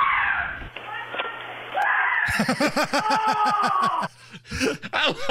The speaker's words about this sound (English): He's on the front porch. The rat hops on him. He freaks out. The rat runs away. He runs in the house. If you play it one more time, Allison, he runs in the house. He's still screaming even though the rat has gone away.